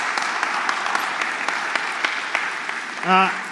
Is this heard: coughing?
no